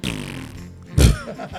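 human body sound, fart

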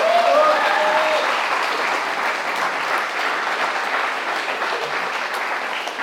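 crowd, audience clapping

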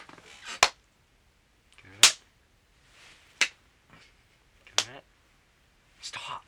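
human body sound, hand clapping

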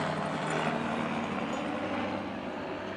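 vehicle, helicopter passing overhead

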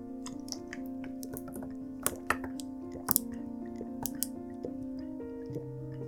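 human body sound, drinking water and swallowing

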